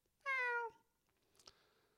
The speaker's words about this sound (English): I mean, God knows what their meow would sound like if they're a they, them. They'd probably call it, like, not a meow, like a thiao.